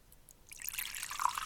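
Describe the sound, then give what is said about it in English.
A little scotch is poured neat, without ice, into a glass, a short, bright trickle that starts after a brief quiet moment and builds into a steady, splashy gurgle. No voices are heard. “You have to drink this neat. So here, I'm going to pour a little bit.”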